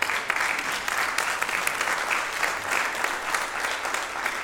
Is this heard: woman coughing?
no